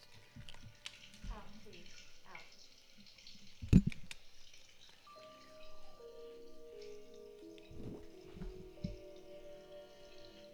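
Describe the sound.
Water runs steadily from a shower with occasional drips and splashes, while faint, muffled voices and a few thumps come through in the background.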